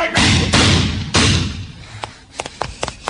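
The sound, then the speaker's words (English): A car with no lights and no license plate strikes a man with a few heavy thuds in quick succession, followed by a low rumble that fades and scattered small knocks and clatters. No one speaks. “Just knocked me down. License? No lights. No license”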